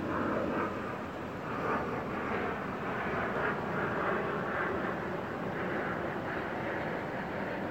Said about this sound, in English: I don't know if you can, have to play this back to see if you could hear the planes overhead.